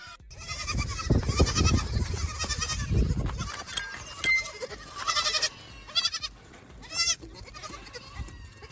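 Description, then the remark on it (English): Several goats bleat over one another, a chorus of wavering, nasal cries repeating throughout, moderately loud, with no talking. “We went from the goat to a bunch of goats.”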